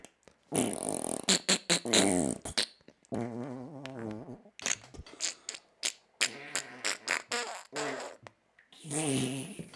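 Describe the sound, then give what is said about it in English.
A string of wet, sputtering fart noises blown with the mouth, loud, some short pops and some longer buzzy raspberries, coming in quick irregular bursts with no talking. “Fart noises with my mouth.”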